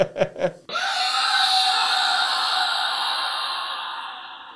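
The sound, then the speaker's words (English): A few quick, breathy laughs, then a loud, anguished scream from an anime character as he dies takes over and holds for nearly four seconds, strained and piercing, fading slightly at the end. “But that guy who screams when he dies is the same exact fucking scream as Hajime?”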